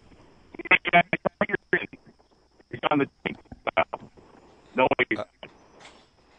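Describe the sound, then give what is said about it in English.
A caller on a golfing assignment phones in: the voice breaks up into choppy, garbled bursts over a poor phone line, with narrowband tinny speech cutting in and out and no intelligible words. “We got a bad connection.”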